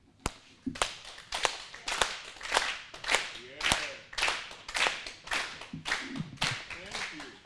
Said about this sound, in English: But even if you can't play an instrument, you can clap your hand. Let's do this.